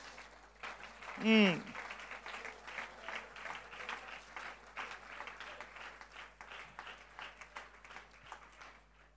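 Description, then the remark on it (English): A church audience breaks into steady, dense applause as a clap offering to the Lord, carrying on for several seconds, with one voice letting out a brief, high, wavering cheer near the start. “Oh, that's a good place to give a clap offering to the Lord.”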